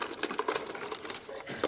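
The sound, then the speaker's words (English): A bunch of keys, looking like house keys found in the woods, jangles and clinks, a busy stream of bright metallic rattles that keeps going for under two seconds with no voices. “What's that sound like? Keys. Rocky, what are you doing with keys?”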